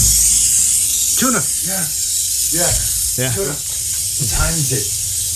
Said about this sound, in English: You hear that? A sizzle. Sizzling. It's really hot, whatever it is.